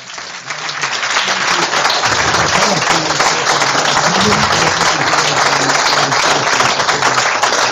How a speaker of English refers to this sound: There we go. And a wonderful round of applause.